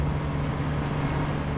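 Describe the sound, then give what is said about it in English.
A high-powered Suzuki outboard engine on a boat drones steadily at a constant, loud level as the boat travels through channels in southern Mississippi. A low humming tone sits over a broad rushing wash of noise. No one speaks. “Lewis took the Solvable team on the water, zipping his boat's high-powered Suzuki engine through the seemingly endless channels in southern Mississippi.”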